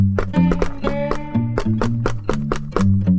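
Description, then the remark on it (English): A secret knock on a heavy metal door about two feet thick: roughly a dozen sharp raps in a quick, uneven rhythmic pattern, heard alone over a steady low humming tone. “All right, well, I guess a secret knock would be in order.”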